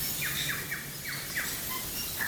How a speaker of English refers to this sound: So, bellbird. There's Tui there. Yeah. Sounds like a grumpy Tui. Yeah, and there was saddleback flew past. So I think I can hear some saddleback in the background there.